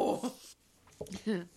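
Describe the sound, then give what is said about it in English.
A person gives a short, playful imitation of an animal growl when asked to do their best growl: a few rough, throaty voiced bursts with brief pauses between them. “Can you do a growl? Do your best growl.”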